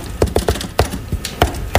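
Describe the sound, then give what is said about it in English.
Crisp knocks on a door tap out the classic shave-and-a-haircut rhythm: a quick run of raps, a pause, then two final knocks. No one speaks. “you know how sometimes when I knock on a door, I go like this?”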